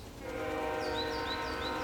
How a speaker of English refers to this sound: I must be heading in the general direction of civilization, because I've been hearing a train every now and then. Ha! Perfect timing. There it is again.